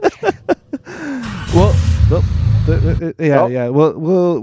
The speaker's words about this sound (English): Well, the car's on. It's chilling. Well, it's idling. We're good. It is an old Honda. It is an old Honda.